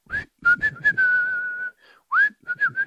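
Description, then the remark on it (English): A person whistles a TV theme tune, a short, bouncy melody with quick rising and falling notes, one long held tone, and a brief pause before the tune resumes. No one speaks. “His favourite whistle is actually the whistle from The Good Life. I can't do it very well because I'm not a good whistler.”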